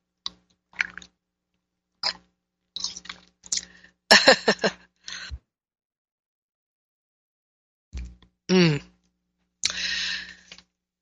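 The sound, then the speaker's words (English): Soft wet mouth clicks lead into a louder slurping sip of tea, followed after a pause by a swallow, a short voiced 'ahh' and a breathy exhale. No one speaks. “Okay, I must sip my tea.”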